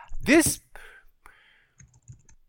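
A short vocal sound at the start, then a few soft, scattered keyboard clicks tapping quietly in the background.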